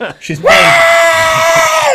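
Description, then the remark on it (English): A voice imitates Patrick Mahomes' fiancée screaming: one loud, sustained high-pitched shriek held steadily for over a second after a brief vocal lead-in. “Plus, he's probably got Patrick Mahomes' fiance screaming in his fucking ear.”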